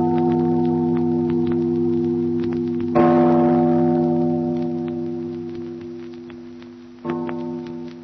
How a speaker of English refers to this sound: Father, listen to the bell. Listen to the bell. It rings in spite of her.